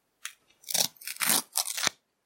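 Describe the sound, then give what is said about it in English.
A sticker packet is torn open in four quick, crinkly ripping bursts, bright and papery with a crunchy texture, the last one a sharp snap. No one speaks. “Oh, that noise. That was a good one as well, that tear.”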